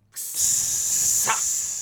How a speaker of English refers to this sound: All right, it is time for the sizzle.